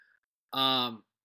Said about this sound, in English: Yawn number one.